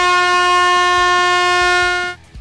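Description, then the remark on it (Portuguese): A loud, steady air horn blast sounds alone for about two seconds, its bright tone held evenly before cutting off abruptly. “Uma meia buzina aqui”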